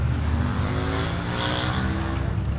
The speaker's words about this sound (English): Loud ass motorcycle.